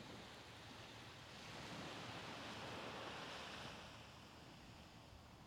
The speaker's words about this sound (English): The waves rise, and you can feel that in your body. And they fall along the shore, creating a peaceful trickling sound all along the way.